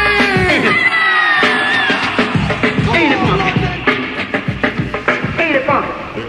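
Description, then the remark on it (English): A large crowd screams and cheers loudly and continuously, with many overlapping high-pitched shrieks and whoops rising and falling together, energetic throughout. “Ain't everybody scream.”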